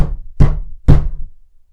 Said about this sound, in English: And were finishing breakfast in their little parlor and eagerly discussing their plans for the day when a heavy knock sounded at the door.